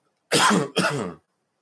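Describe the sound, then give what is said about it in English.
Two quick coughs in succession from a person still getting over a cough, harsh and throaty, the second one rasping like a throat being cleared, then silence; no talking. “And so I just wanted to read, excuse me, still getting over this cough.”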